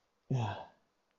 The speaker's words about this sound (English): Yeah. We just took a big ass sip. What was that? Sounds like the fucking Roblox sip sound.